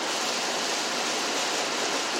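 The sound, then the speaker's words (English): A steady, unbroken hiss of rain while driving, a dense even wash of noise with no distinct drops or pauses and no voices. “I'm driving in the rain.”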